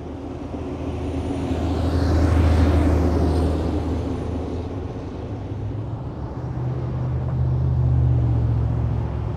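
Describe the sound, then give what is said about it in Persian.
Steady city car traffic in Iran rumbles throughout, with a loud vehicle sweeping past near the start and another swelling toward the end, engines droning low over a constant urban hum. “خودروها همه جای شهر.”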